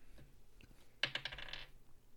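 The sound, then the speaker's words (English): Dice clatter across a hard tabletop in a quick burst of rattling clicks lasting under a second, then settle into quiet, rolling an 11. Fairly soft, with no voices. “Roll dice.”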